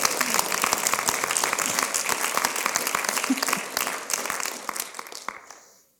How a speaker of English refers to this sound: In fact, give all the health professionals a hand clap. They do amazing things.